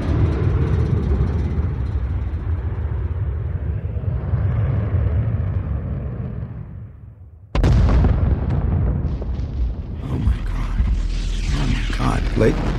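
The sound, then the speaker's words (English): An Air Force fighter jet's deep, roaring rumble builds and then fades, cut off by a sudden loud explosion as it crashes into Jericho Mountain, becoming a sustained, crackling blast of noise lasting several seconds. “And just I watched what appeared to be an Air Force fighter jet just crashing and exploding into Jericho Mountain.”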